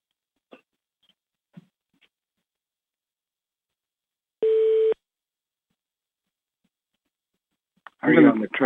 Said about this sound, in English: Somebody's on hold. Do you hear that beeping sound? Yeah. Yeah. Somebody's out of line.